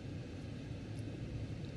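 A steady, muffled low rumble fills the cabin of a moving car, with constant road and engine noise and no voices.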